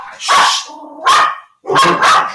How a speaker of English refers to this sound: Okay, guys, sorry. My dog just keeps barking. Can't stop it.